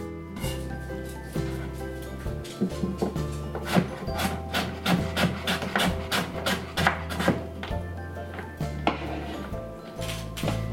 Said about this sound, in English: So keep chopping the sweet potato until you have about a cup of that super small dice.